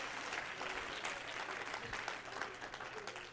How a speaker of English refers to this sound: Somebody clap your hand.